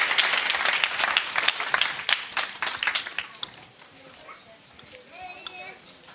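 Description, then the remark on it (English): An audience applauds for the children with dense, rapid clapping that starts loud and full, then thins and fades after a few seconds, leaving faint voices and children's chatter underneath. “So give our children a round of applause.”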